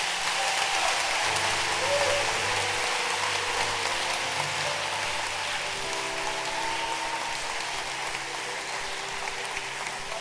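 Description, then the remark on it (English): A crowd applauds the council pastors steadily, a dense wash of many hands clapping at once that holds an even loudness for about ten seconds, with faint low tones humming underneath. “Clap your hands for your pastors.”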